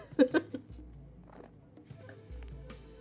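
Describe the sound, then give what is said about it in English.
Wet mouth sounds of someone sipping and slurping Sauvignon Blanc white wine to draw in air while tasting it, with a couple of sharp slurps near the start followed by quieter smacking over a low background hum. “So just get some air, have a bit of a slurp to it.”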